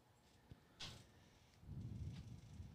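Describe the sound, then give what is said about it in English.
A soft click followed by a brief scraping burst and then a low rumbling shuffle, like a door being opened; fairly quiet overall, with no talking. “So I don't know if anybody's actually here or somebody just knocked on the door.”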